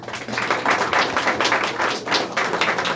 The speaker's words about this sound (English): So I'd like to actually give everyone on the REJS team a big round of applause, please.